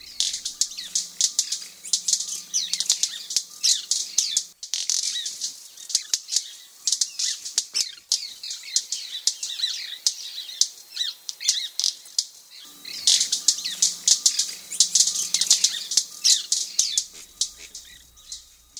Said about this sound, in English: So here's what a white-bearded manakin sounds like.